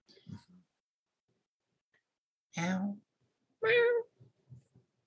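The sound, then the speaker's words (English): A person imitates a cat, giving two drawn-out, harmonic meows about a second apart, with faint breathy sounds and soft low murmurs before and after. “meowing back and forth.”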